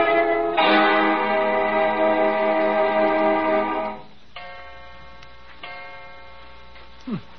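A clock strikes 2 o'clock with rich, ringing chimes: one loud, sustained tone fades out, followed by softer strikes that ring and decay, with faint ticking underneath. No one speaks.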